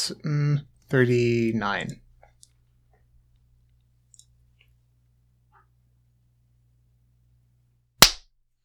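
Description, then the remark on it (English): A short burst of voice opens, followed by several seconds of near silence, then a single sharp, loud hand clap, used as a sync mark, snaps out and fades quickly. “I'm assuming you felt like your clap was fine.”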